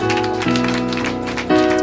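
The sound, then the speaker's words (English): A standing church audience claps together in a steady rhythm, clapping unto the Lord as the service closes, over sustained, loud keyboard chords that shift pitch partway through. “As you are standing, I want you to give a clap unto the Lord.”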